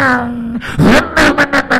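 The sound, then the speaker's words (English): A voice imitates a car engine driving down a street: a steady humming drone, then a series of loud, rhythmic revving bursts, lasting under two seconds. “You're driving down the street. Sound effect.”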